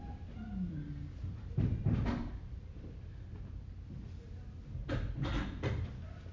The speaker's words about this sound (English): I'm going to close that door. They're, whatever game they're playing, they're having a good time. And it's bouncing this way really well.